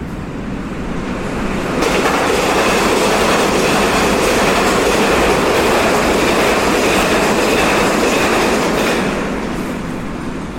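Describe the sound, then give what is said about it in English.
A souped-up railway handcar, riot car number one with six men aboard, modified by engineers for a top speed of 80 miles an hour, races by on the tracks: a loud, steady roar of rumbling wheels with rapid rhythmic clacking, swelling in quickly and easing slightly at the end, with no voices. “It looks like a regular railway handcar, but it's been souped up by our engineers with a top speed of 80 miles an hour.”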